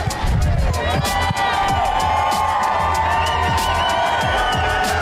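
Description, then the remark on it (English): A large crowd cheers and shouts continuously at an introductory press conference in Phoenix, Arizona, a dense wash of voices and whoops with rhythmic thumping underneath, loud and sustained throughout. “This is Kevin Durant's introductory press conference as he acknowledges the crowd out there in Phoenix.”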